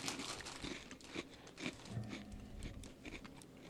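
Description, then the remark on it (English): Steady crunching and crinkling as pizzeria-flavored baked pretzel snacks are chewed, with irregular crisp bursts and a faint rustle of a bag, no talking. “I could munch on those.”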